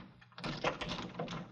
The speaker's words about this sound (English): Come in quickly. Close the door. Lock it.